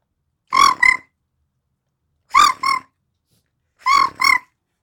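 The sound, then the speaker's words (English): A woman imitates a cricket with her voice while rubbing her legs together: three evenly spaced pairs of short, raspy chirps, fairly loud, with silence between each pair and no other talking. “And so I would do the sound of a cricket while rubbing my legs together, like as a cricket.”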